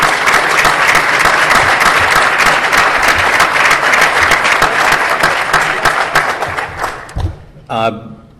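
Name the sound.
audience round of applause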